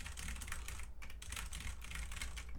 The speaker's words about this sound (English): I got a new mechanical keyboard. Oh, word. I was like, that's like... kind of gentle. Yeah, no, it's I got MX Cherry Blacks, which are like some of the least clacky but still have a good response feel. I'm liking them.